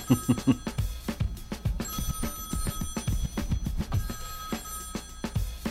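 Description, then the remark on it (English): An outgoing FaceTime video call rings with a steady electronic tone, repeating over tapping and knocking noises. No one speaks. “Heather tried to FaceTime me during that song that you love, and I don't know if that works, so I'm going to try to call her back”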